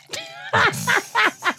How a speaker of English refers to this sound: He's pouring water from cup to cup.